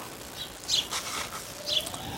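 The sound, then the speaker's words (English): Many sparrows chirp in short, high bursts a second apart, with a brief soft flutter of wings in between; no one speaks. “Along with an awful lot of sparrows.”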